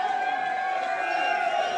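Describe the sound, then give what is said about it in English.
A crowd roars and cheers in a steady, dense wash of voices that stays loud and unbroken for the whole short stretch, with no single speaker standing out, as a performer does a flex up top. “Does a flex up top, the crowd's going crazy.”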